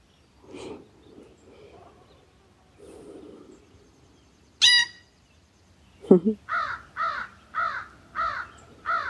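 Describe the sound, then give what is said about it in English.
A crow caws repeatedly in a steady rhythm of six or so harsh, loud calls, after a few softer murmurs and a sharp chirp earlier on. “And Cousin Crow.”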